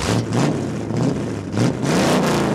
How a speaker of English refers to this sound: switched out the Maserati for a Camaro, and he definitely wasn't shy about seeing what the car could do.